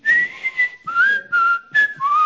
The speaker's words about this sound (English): In fact, if you grew up in the 80s, I guarantee you, you whistled this.